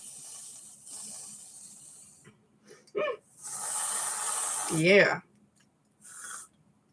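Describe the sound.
An aerosol whipped cream can sprays in several close, hissy bursts: a long one, a longer one after a pause, then a short final squirt, with a brief voice sound in between.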